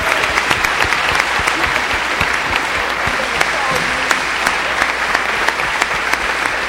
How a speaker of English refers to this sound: Y'all, please give a round of applause for ….